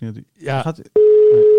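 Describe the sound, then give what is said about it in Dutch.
A person speaks briefly, then a loud, steady ringing tone of an outgoing telephone call starts and holds continuously to the end, unanswered, with faint talk murmuring beneath it. “Dus ik weet niet of je dan nu om deze reden niet oppakt.”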